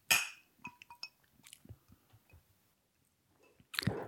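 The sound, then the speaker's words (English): Glasses of gin clink together once in a bright toast, the ring fading quickly, followed by soft sipping and swallowing of the gin and another sharp clatter at the end. “Drink up your gin. Let's get on the road and we'll see you at Hampstead Heath. Necking it responsibly. Oh, cheers.”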